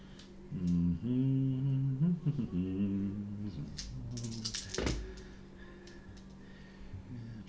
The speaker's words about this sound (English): Can you really drop dice in here? Oh, yeah. You drop it from the top. You drop it yeah. Right here. That's awesome.